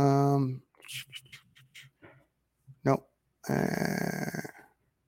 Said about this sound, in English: I kind of got to type on this keyboard around my microphone right here.